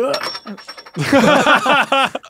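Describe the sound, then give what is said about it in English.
A large oversized inspiration die from D&D Live, used in place of a normal quarter, is spun on a tabletop instead of flipped. It gives a thin, sustained metallic ring beneath chatter, followed by an excited burst of voices and laughter from a small group. It lands tails. “It's too big to flip because it'll be real loud. So I'm going to spin it.”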